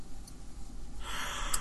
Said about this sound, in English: We're both yawning.